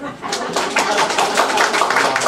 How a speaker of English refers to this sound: All the Republicans clap.